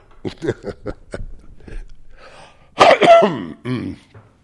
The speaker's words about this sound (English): Yeah, it's a nice hacking cough, but it still is on its way out.